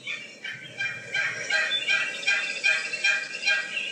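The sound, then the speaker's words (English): A female turkey yelps in a steady series of about eight sharp, raspy notes, evenly spaced, with no voices around it. “I think that sounds like an exotic bird, but no, it's just a female turkey yelping away.”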